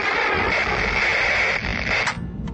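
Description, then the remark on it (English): A loud, steady burst of harsh white-noise static roars continuously for a couple of seconds at the end of a recording, dense and hissing across the range, with a slight flutter near the end and no voices. “The recording ended with a blast of white noise that made the envoy jump.”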